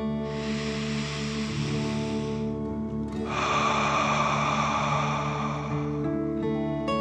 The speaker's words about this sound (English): Last one. Fill up your chest and belly. Deep breath in and out.